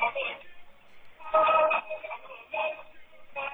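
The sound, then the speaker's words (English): Tinny, band-limited music plays through a kid's small cell phone speaker, thin and distorted with no bass, swelling in louder bursts as a singing voice comes and goes. “I don't think this counts as copyright infringement shit because it's coming through this kid's shitty fucking cell phone.”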